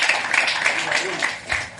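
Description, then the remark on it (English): An audience breaks into applause for the president of the Yale Club of Nigeria, a dense, steady patter of many hands clapping together for a couple of seconds, with a brief swell near the end. “Please, a round of applause for him.”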